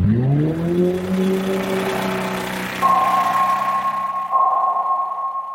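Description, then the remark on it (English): Underwater noise from commercial shipping: a steady, loud mechanical drone with layered low harmonic hum that rises briefly in pitch at the start, then holds, with a thin whining tone joining partway through. “The one that we think about a lot with the species I study are the sounds generated from commercial shipping.”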